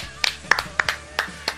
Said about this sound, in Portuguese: Sensacional, nossa senhora. Palmas.